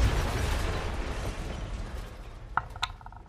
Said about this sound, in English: Okay, so there's this explosion. She shot back 20 feet, smashes through one of those glass columns and goes rolling.